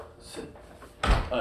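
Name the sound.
door being shut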